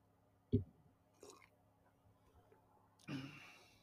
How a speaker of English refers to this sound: Like, what's going on right now as I take another sip?